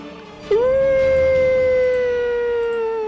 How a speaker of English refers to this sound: And now it's all the wolves. They are going to go in 4x4 formation. 4 are going to go west, northeast, and 4 are going to go southeast. And they're going to howl.